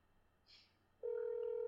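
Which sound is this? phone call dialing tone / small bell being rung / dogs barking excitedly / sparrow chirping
phone call dialing tone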